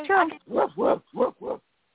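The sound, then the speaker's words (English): A woman imitates a dog barking, letting out five quick, throaty woofs in a steady rhythm, fairly loud, with no other sounds around her. “I have to give her applause because it was a dog and she sounded like a dog.”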